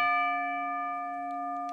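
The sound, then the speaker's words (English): A single bell strike rings out clearly, its bright metallic tone sustaining and slowly fading over a couple of seconds, with no voices over it. “Ring the bell.”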